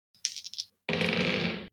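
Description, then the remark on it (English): Dice roll on a table, landing on a 5 and an 8: a quick burst of small clicking knocks, then a longer, steady rattling clatter for nearly a second. Fairly loud, with no voices. “That is a 5 and an 8 on the dice, so I don't think their bonuses are really going to matter.”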